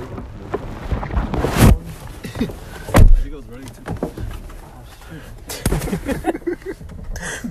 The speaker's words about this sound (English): Damn, dude. Did he drop the new phone? New phone destroyed. Tell me it's broken.